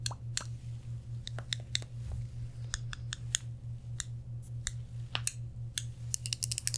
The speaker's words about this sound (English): You said it doesn't sound like a regular scissors. It's not. It's a plastic scissors, but it's still a scissors.